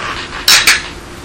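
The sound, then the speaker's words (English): Two glasses of cloudy, honey-orange, highly carbonated beer clink in a toast: two quick, bright clinks one right after the other, each leaving a short high ringing tone before fading into faint background hiss. “Well, cheers. Cheers, that.”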